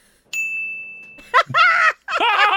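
A single bright, high-pitched ding sound effect from a button rings out and holds steadily for about a second before cutting off, then voices break in with loud, animated talk.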